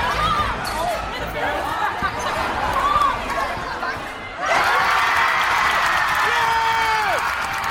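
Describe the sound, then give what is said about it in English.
A crowd at a basketball game in a gym murmurs and calls out, then suddenly erupts into loud, sustained cheering and shouting around the midpoint as a player makes a basket, with high voices rising above the roar. “And then he made a basket, and the place erupted.”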